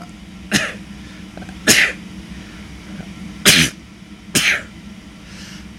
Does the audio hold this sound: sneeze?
yes